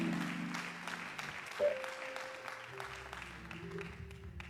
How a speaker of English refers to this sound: Clap your hands as you're seated and give him praise.